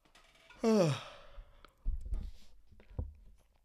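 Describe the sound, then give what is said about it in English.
A person lets out a loud yawn, a drawn-out voiced groan that slides downward in pitch, followed by a few softer breathy exhales and faint rustling. “Sorry for yawning in everybody's ear, but please understand that I am fighting tooth and nail.”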